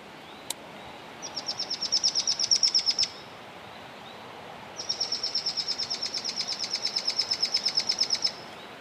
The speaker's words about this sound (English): Yeah, so we're going to try to play some chattery calls from mohua recorded nearby. And there may be a pair in this area. We're going to try to see if we can get them to make some noise for us so we can find them.